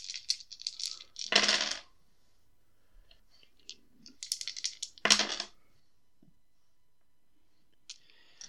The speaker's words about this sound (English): So that is a total of... I need more dice, so I'll have to re-roll.